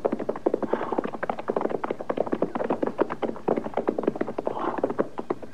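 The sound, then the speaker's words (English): Steady hooves clip-clopping, a dense, uneven rhythm of sharp clops that suggests several horses walking together, with no voices over it. “All right, we'll leave the horses here.”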